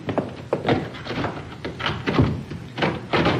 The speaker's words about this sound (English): Good idea. I'll lock the door.